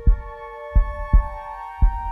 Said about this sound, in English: He gets back home and we hear the heartbeat start up.